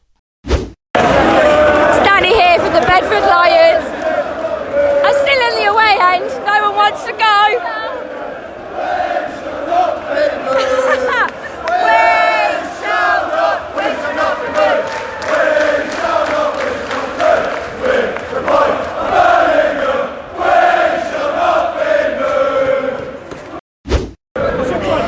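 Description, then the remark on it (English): A loud Bedford Lions football crowd, still gathered after the match with no one wanting to go home, chants and cheers almost nonstop for about 25 seconds, massed voices rising and falling in sung phrases, broken only by a brief gap near the start and another near the end. “I'm outside the crowd. No one wants to go home.”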